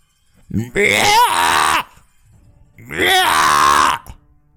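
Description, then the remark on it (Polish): Two loud, harsh, eerie screeches, each lasting about a second with a short pause between them, shrill and wavering like a distressed animal or bird, with nothing else around them. “Brzmiało ni to jak ptak, ni to jak zarzynane zwierzę.”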